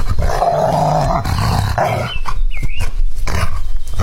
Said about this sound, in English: And they would have cut the salesman down and given him a decent burial, but the white dog stood guard over his master's corpse day after day, savagely threatening anyone who came near the hanging tree.